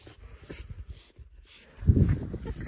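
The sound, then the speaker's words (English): A shepherd's puppy, coming to play, moves right up against the microphone, sniffing and shuffling in short bursts, then bumps it with a louder rustle near the end. No one speaks. “His dog called the puppy back, and he bolted downhill.”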